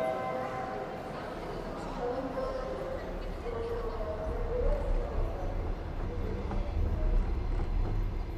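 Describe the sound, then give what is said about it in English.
Steady low rumble of an overnight train to Odessa, Ukraine, rolling along, heard from inside a carriage, with a continuous rattling drone and faint murmuring voices in the background. “But it was a relief finally to leave the party and board the overnight train to Odessa, just the three of us.”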